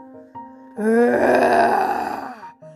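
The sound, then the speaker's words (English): A voice imitates a dragon's roar: a single loud, rough, drawn-out growl lasting under two seconds, rising suddenly after a low hum and then cutting off. “And the witch heard a roar that was scary and loud.”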